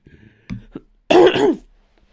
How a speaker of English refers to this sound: I should probably edit out the coughing, but there we go.